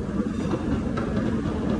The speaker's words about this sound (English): Still got the fucking train cars, boys.